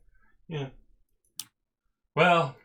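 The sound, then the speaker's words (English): A single sharp click as a small toy case's little button is pressed and it pops open, set between two brief vocal murmurs from a person. “It's got a little button and it just pops open.”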